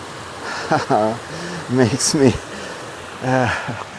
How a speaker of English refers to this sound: I don't know if it's been a pond or something here, because there's a little rapids just under the bridge here.